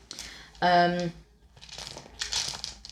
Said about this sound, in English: Just moving the dice around. It's so nice.